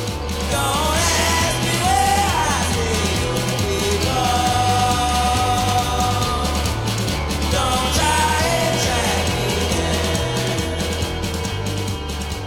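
A loud, dense rock song plays throughout with a steady pulsing bass and drums, while a female vocal wails and swoops in sliding, yell-like phrases over the band.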